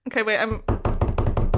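A short drum roll tapped by hand, a quick, steady run of loud taps lasting about a second, following a brief sung vocal sound.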